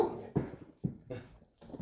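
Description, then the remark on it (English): A male dog, coming in as if scared, whimpers in four or five short, uneven bursts over a couple of seconds, each cry rising and fading quickly. Nobody speaks. “He comes right in like he's scared. Hey, relax. Okay, good dog. Good dog, hush.”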